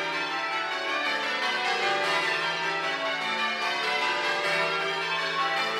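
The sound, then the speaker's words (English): Church bells ring continuously in a dense, overlapping peal, bright metallic tones sustained and steady with no voices present. “And it's a very good way of introducing people to bell ringing and showing them what it's all about.”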